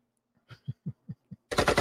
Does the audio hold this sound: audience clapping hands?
no